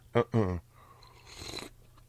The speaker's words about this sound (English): Sorry about that. Another sip of coffee. My voice is a little scratchy.